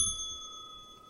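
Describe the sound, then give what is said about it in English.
A single bicycle bell ding rings out clearly, its bright metallic tone hanging and slowly fading over about a second, with no talking around it. “I don't know how that bell got in here.”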